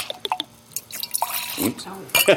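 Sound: drink being poured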